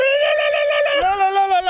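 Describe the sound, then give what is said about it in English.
A person voices the guttural roar of a tentacled ice beast before it lunges to attack, a loud, sustained, strained cry that holds steady and then drops lower in pitch partway through. It lasts just under two seconds with no talk around it. “The beast lets out the guttural roar of a hidden and forgotten language before lunging to attack.”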